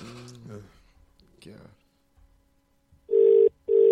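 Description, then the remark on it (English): Brief murmured talk fades, then a phone call's ringing tone sounds through the line: two loud, steady electronic bursts separated by a short pause. “It's ringing.”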